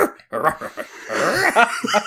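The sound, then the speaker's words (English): Someone imitates a dog or wolf with a few short, wavering vocal yelps and howl-like glides, broken up by breathy, laugh-like bursts. “you're getting in touch with your inner wolf.”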